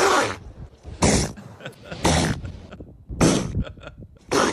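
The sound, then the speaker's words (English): A seal sneezes five times in a row, each sneeze a loud, sharp, breathy burst about a second apart, with quieter snuffling and huffing between them. “Why is he sneezing so much? Oh, now look at you. Oh, poor seal.”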